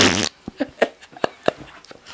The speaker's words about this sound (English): Don't fart in my face